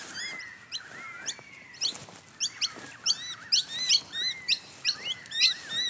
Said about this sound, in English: The noisy miners have woken up. Hello, noisy birds. Oh, the noisy miners just chased one of the currawongs away. How rude.